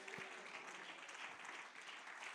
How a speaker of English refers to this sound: Somebody give the Lord a good hand clap of praise.